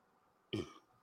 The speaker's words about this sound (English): Excuse me. I'd like to apologize for my outburst. That was actually literally the gayest burp I've ever heard.